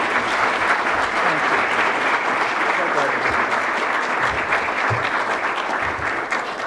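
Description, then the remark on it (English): Sustained applause from a large audience welcoming the Secretary of the Air Force as a speaker, a dense, steady roar of clapping hands that holds at an even, loud level for several seconds without any talking over it. “Would you please, with your warm applause, welcome Secretary of the Air Force, Heather Wilson.”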